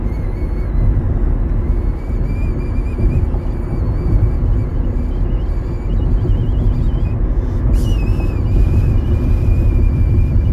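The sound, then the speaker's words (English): A thin, sustained whistle wavers in pitch with a shaky vibrato caused by the car bumping, riding over a loud, constant low rumble of a car on a bumpy road for the whole stretch. “hear that vibrato in my whistle?”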